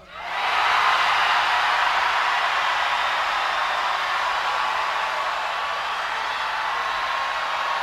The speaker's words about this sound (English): We need a lot of screaming and moaning and groaning. So let's try one more time.